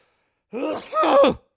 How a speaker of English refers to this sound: Excuse me. See, I could cut this out. I could edit out my big sneeze, but I'm keeping it real, man. That was a big sneeze, wasn't it?